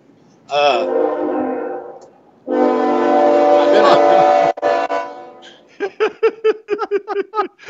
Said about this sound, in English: There's a train getting ready to go by. You can probably hear it.